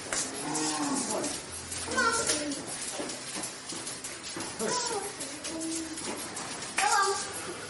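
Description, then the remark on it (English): Several cows moo in turn on an organically farmed biodynamic farm, their drawn-out, rising calls overlapping now and then over steady outdoor farmyard noise, fairly loud. “And the emphasis is on diversity, not just cows, not just raspberries.”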